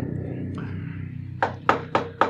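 Four sharp, evenly spaced knocks rap on a door over a low, steady background hum, each hit a short, solid thud following a brief quiet stretch.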